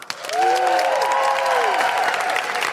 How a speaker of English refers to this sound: Please put your hands together and make incredible wooing noises